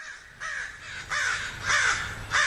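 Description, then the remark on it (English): A crow caws four times in a steady rhythm, harsh and fairly loud, each call a rasping burst with short gaps between, heard alone without any voices. “There's that pesky crow again. It's determined to have the last word.”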